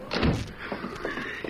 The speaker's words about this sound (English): Shut that door before you start talking.